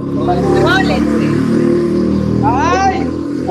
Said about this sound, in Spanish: ¿Por dónde pasó una moto?